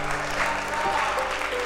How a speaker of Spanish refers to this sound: Alguien déle un aplauso al Señor. Alguien déle un aplauso al Señor. Vamos, alguien déle un aplauso al Señor en esta noche.